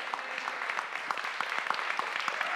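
A crowd claps steadily, many hands producing a dense, even patter of bright slaps with no voices standing out, sustained at a moderate level throughout.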